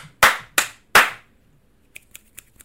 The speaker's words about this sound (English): This is me, you see that? This is me just raining snaps. Four claps and a bunch of snaps.